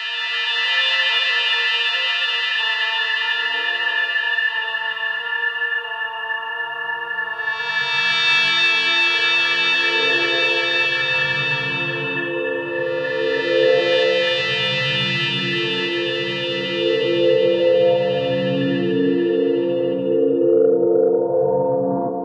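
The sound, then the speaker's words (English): Layered, droning electronic tones overdubbed on tape build over one another, as a woman adds tape delay and spring reverb, with bright swelling sweeps rising and falling through a dense, continuous texture. No one speaks. “And then another leader, and she's adding tape delay and spring reverb to it.”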